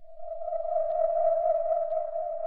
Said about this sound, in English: The Beijing pigeon whistle has 200 years of history, with 4 existing types and 8 schools. Air fills the cucurbit vessel and resonates to create its distinctive sound.